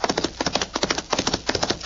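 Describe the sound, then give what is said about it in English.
A horse named Diablo gallops hard, chasing another horse, its hoofbeats pounding in a fast, steady rhythm of sharp, loud clops with no voices over them. “Now, show me you can catch that other horse.”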